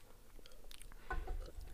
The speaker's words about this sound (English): Let me take a sip of beer before.